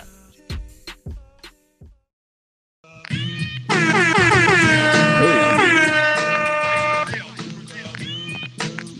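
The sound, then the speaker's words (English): A few sharp drum hits and a short pause, then a loud, blaring air-horn sample that holds steady for several seconds, its stacked tones bending in pitch, over a thumping musical backing. “In the horn. That sample is crazy.”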